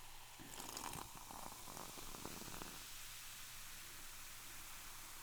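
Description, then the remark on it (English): Diet 7-Up soda fizzing: a burst of crackling, popping bubbles for a couple of seconds that settles into a soft, steady hiss, with no voices. “Fizzy. It's Diet 7-Up.”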